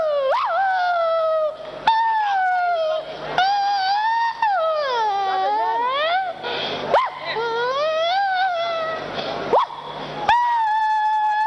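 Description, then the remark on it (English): A dog howls in long, wavering, rising and falling cries that run almost continuously, broken now and then by short sharp yips or barks, loud. “You hear the sound of dog.”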